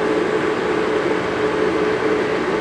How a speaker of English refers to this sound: And Metrolink is going what is westbound at 8:57 a.m., okay?